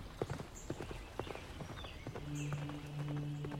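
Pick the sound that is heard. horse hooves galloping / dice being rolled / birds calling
horse hooves galloping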